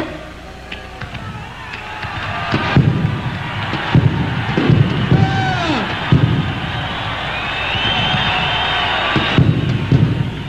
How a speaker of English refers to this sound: It's a massive explosion. Yeah. It's like, I mean, it's obviously an accident.